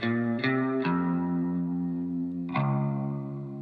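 An electric guitar plays four ringing notes, three close together and one after a pause, each sustaining into a wash of plate reverb plus spring reverb on the amplifier, with a wavering tremolo from a Fender Quad Reverb amplifier; a thin, spiky tone, with no voices.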